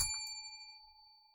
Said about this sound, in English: Ring the bell, please.